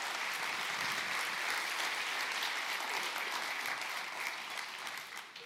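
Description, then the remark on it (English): Sustained audience applause at New Hope welcoming a guest pastor to the stage, a dense wash of many hands clapping steadily at a loud, even level before easing off slightly at the very end, with no voices standing out. “Anybody can clap.”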